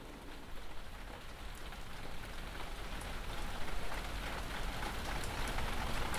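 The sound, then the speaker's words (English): Steady rain pours down at night onto grapevines, pattering on a hard surface, a dense, continuous hiss with scattered sharper drops, unchanging in intensity, with no voices. “I asked Marie-Ange if she thinks it'll rain. She said she hoped so, but it won't. I trusted her. Now my mustard yellow sundress is soaking wet”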